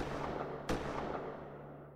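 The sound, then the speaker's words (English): A single sharp gunshot cracks out in the dark early hours of the night against a steady low hum, its echo trailing off slowly; no one speaks. “But several hours later, these men and women were awoken in the dark, early hours of October 11th by a pair of gunshots.”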